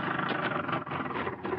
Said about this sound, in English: Oh, there comes Nick now. There's his car coming across the field.